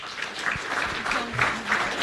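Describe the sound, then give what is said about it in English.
A crowd claps steadily, welcoming a speaker at a talk on blockchain technology for emerging market investment: a dense patter of many hands forming a sustained round of applause at moderate loudness, with faint murmuring voices underneath. “Why don't you give her a round of applause?”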